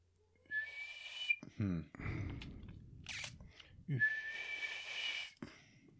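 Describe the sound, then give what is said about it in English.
A person imitates an elk bugle with two breathy, high-pitched whistling squeals, separated by low grunting and huffing sounds, fairly loud with no words spoken. “Well, you just did like an elk bugle.”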